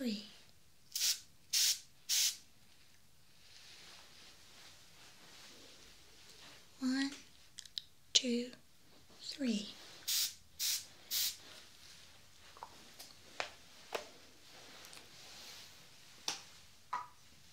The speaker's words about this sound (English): Now the final object, I'm actually going to spray it close to your nose. So when you hear the spraying sound, I want you to take a deep breath through your nose and tell me what it is.